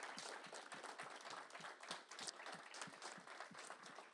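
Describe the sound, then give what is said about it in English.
Sustained applause from a crowd, a dense wash of many hands clapping steadily and fairly loudly throughout, with no voices standing out. “But with all of that being shared and said, can we just say thank you, God, and give another round of applause?”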